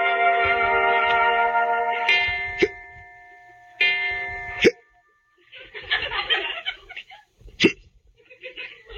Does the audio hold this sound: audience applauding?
no